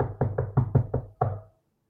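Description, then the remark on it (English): A woman knocks six firm times on a door in a quick, steady rhythm, the last knock landing after a slight pause, fairly loud with no voices. “And she's going to just knock on the door then.”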